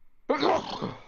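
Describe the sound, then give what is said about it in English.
A man sneezes once, abruptly after a short silence, a loud, breathy, noisy blast that trails off over about a second, with no talking around it. “Bless you, sir.”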